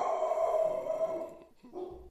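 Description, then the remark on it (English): A dog howls in one long, sustained, wavering cry lasting over a second, then gives a shorter second howl after a brief pause, with no talking. “My dog agrees. I was wondering what happened there. Yeah. The ultimate factor here. Oh, could you not hear that insane howl?”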